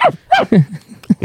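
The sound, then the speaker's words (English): A small dog yips and whines in a quick series of about five short, high-pitched bursts, several sliding downward in pitch, with brief pauses between them. “It looked like a very small dog in the poster, and that sounded like a small dog.”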